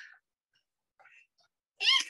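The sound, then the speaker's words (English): A sudden, loud sneeze bursts out near the end, a sharp noisy blast with a voiced edge, preceded by a couple of faint breathy catches. “Bless you.”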